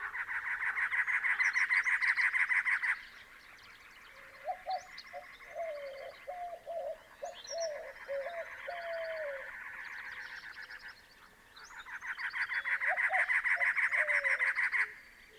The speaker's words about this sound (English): We're impressed by the rollicking dawn chorus. The mechanical chirring of cactus wrens dominate the soundscape.